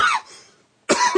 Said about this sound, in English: sorry, excuse me. Yeah, there was a comment about your coughing last time. Yeah, so. I know. They're like, get it under control, man. Get it under control.